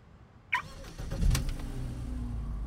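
A self-driving car's engine starts: a brief chirp, a quick crank that catches with a surge, then a steady low rumbling idle that holds to the end.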